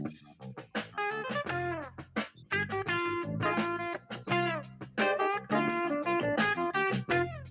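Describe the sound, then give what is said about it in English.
A TV sitcom theme song plays loud: a punchy instrumental with a prominent bass line and bright bending melody notes in short rhythmic phrases, with no voices over it. “That's the theme song to a show called Barney Miller.”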